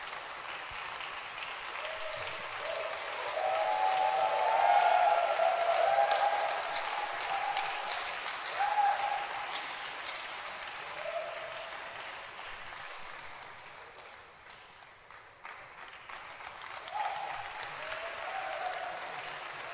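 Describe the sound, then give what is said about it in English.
Sustained applause from a large audience at a preaching service, welcoming a woman who will sing: a dense wash of many hands clapping that swells, dips slightly, then continues steadily for about twenty seconds with no voices. “Keep clapping.”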